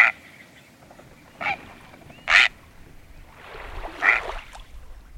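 A great blue heron gives four harsh, raspy, prehistoric-sounding croaks at uneven intervals, loud, the last one longer and rougher, with no voices present.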